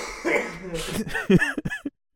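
A few rough coughing bursts, slightly distant from the microphone, mixed with some throaty voiced sounds, all within about two seconds before falling silent.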